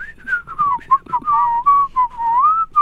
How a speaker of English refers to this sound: And then whistle.